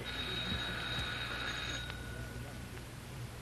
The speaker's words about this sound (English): Oh, I guess we better ring the bell.